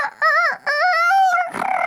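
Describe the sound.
A person's voice imitates a rooster's crow in a loud, drawn-out call with a fluttering rolled-R trill, two rising-and-falling phrases ending in a short breathy rasp, mimicking a rooster that seemed to crow with a Spanish accent.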